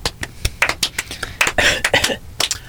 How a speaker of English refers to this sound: Give him a round of applause or whatever.